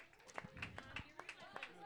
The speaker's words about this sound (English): The librarians have won. Round of applause, team number 5. The librarians have won overall.